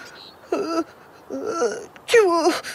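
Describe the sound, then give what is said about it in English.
A small, squeaky sneeze from a shelled creature that has caught a cold, preceded by two breathy, wavering build-ups, fairly loud, with the final burst the strongest; it sounds vocalized, like a voice performing the sneeze. “I don't want you sneezing in dark corners.”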